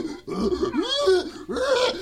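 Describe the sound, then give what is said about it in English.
Three loud, rough pig grunts from a child turning into a pig follow one another in quick succession, each a throaty, voiced snort whose pitch swoops up and then down, with nothing else heard around them. “Don't grunt. That's not a proper way of expressing yourself. If you're going to turn into a pig, my dear, I'll have nothing more to do with you.”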